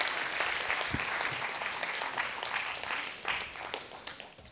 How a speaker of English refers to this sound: Can you guys give these guys a round of applause? Thanks, gentlemen.